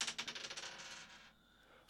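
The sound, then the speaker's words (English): Dice rattle and tumble across a table in a quick burst of sharp clicks that slow and fade over about a second, leaving a quiet hush before one last soft tap; the roll comes up five. “This is like, I've got three of my six tracks, which correspond with the number of the dice.”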